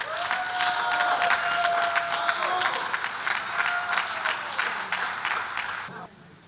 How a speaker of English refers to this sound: And so I want to appreciate this servant of the Lord together with his beloved wife. Help me applaud them. Come on, go ahead and applaud. Let's go on and applaud this servant of the Lord and his wife.